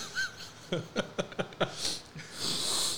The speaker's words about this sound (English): I feel like the sound is annoying to the listeners. What sound? A sniffling.